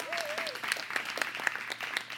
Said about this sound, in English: Come on. Let's clap our hands and thank God for that.